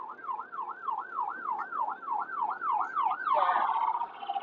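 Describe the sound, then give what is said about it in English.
An ambulance siren wails in a fast, steady rising-and-falling yelp, loud, with the tone shifting abruptly near the end over faint background traffic rumble. “Oh, okay, it's an ambulance.”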